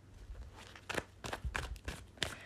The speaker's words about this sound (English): Okay, cards. Come over here. Let me shuffle a little bit more.